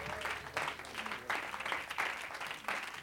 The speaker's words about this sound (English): Come on, just keep clapping for Jesus. Ah, he's worthy, ain't he?